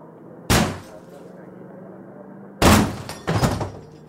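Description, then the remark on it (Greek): A door is battered down with heavy, booming blows: one hard thud, a pause, then two more crashing impacts close together, loud over a low background hum. “Αν δεν ανοίξεις την πόρτα, θα αναγκαστούμε να τη σπάσουμε.”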